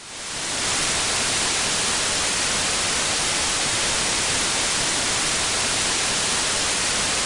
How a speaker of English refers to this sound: What did you hear? It almost sounds like a little tick, tick, tick, tick, tick, tick sort of noise that I'm hearing in the background on top of the hiss. Hmm. Well, first I heard rain. And then I heard static, and then I heard wind.